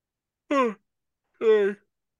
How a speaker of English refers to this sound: Sorry, that was my bad. I just yawned heavy in that segment.